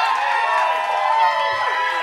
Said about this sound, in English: We need like an applause sound effect anytime someone achieves balance. Okay. I could probably edit in a cheer or something.